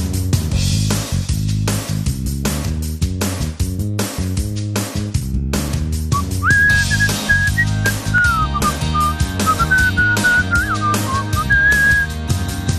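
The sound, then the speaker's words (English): A person whistles a bright melody over a steady instrumental backing with a strong beat, the whistled notes sliding and holding across several phrases, loud. “Not going to get in trouble with ASCAP, am I? For whistling?”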